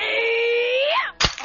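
In a film struggle where Sue fights for her life, a sharp blow to the face smashes Henri Gerard's wax-museum disguise, landing with a single loud smack right after a long, wavering wail that bends upward in pitch and cuts off.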